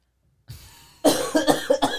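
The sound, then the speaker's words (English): A person with a cold clears their throat, starting with a soft rasp and then breaking into a few loud, rough, rhythmic harrumphs over about a second. “Let me clear my throat.”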